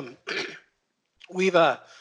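A short throat clear, then after a brief pause a second, longer rasping clear with a voiced, strained edge, from someone who has been a little sick trying to hold back a cough. Moderately loud, with no talking.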